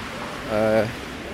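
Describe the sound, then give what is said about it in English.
Rain falls outdoors as a steady, even hiss throughout, briefly overlapped midway by a short voiced sound from a person. “It's raining, guys.”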